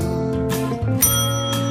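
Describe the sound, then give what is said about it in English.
A bicycle bell rings brightly and repeatedly, its metallic chimes overlapping into a sustained, shimmering jangle that fills the short moment, fairly loud. “And if Shay's recaps are read without a single misstep, ring the bell.”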